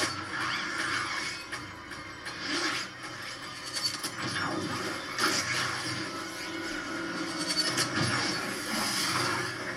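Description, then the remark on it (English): Glass shattering and raining down in a movie scene, a dense, continuous crash lasting several seconds, loud, with sharp bursts of breaking and scattering debris and no voices. “Such a crazy scene. The glass is falling, she's falling backwards, he's flying down.”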